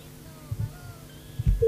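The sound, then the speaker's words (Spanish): A few soft low thumps, then the steady ringing tone of an outgoing telephone call starts abruptly right at the end, fairly loud, with no one speaking. “Estamos llamando.”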